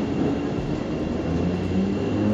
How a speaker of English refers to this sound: Is this our train? No, it is not. This is? Oh, it might be.